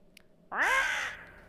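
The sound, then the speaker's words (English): A person lets out a single loud, harsh raven-like caw, a rasping squawk lasting about half a second that trails off, with no talking around it. “my little raven voice.”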